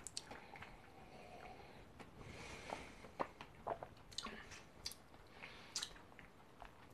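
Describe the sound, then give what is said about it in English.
Wet chewing of chocolate during a bourbon tasting, with irregular smacking and squishy bites over a few seconds, fairly quiet and without talking. “So kind of while still chewing the chocolate, take a swig of your bourbon.”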